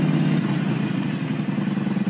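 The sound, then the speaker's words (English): A motorbike engine idles steadily, recorded by a GoPro on the motorbike, a loud, continuous low rumble with a slight pulsing throb and no voices over it. “It's on a motorbike.”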